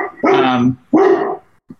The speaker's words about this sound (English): Sorry, I got dogs.